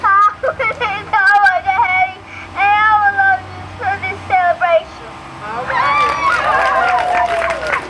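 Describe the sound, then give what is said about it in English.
An outdoor crowd gathered on a warm, breezy evening in North Nashville for the dedication of five wood mosaics at the Elizabeth Park Senior Center murmurs, with several overlapping voices rising and falling in steady chatter, growing into a denser, louder babble toward the end. “A crowd is gathered for the dedication of five wood mosaics, each depicting a woman who was a pillar of this historically black neighborhood.”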